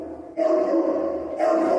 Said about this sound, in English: Oh my God, he is saying reverb. Will you play it again? The dog wanted reverb. He's saying reverb. You can hear the word reverb. The dog wanted reverb.